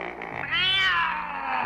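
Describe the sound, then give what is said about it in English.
A giant cat outside a cave lets out a single loud, drawn-out meow that rises and then slowly falls in pitch, heard on its own with no talking. “Now there's a giant cat outside the cave.”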